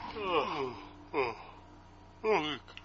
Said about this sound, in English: Well, because we're closer to the snore sound. So I would assume that we are getting closer to the...